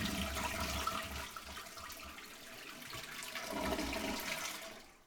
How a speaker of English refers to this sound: Still got the toilet flush.